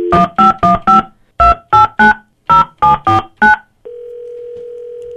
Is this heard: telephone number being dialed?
yes